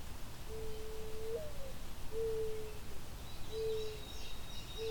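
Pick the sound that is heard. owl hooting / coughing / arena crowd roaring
owl hooting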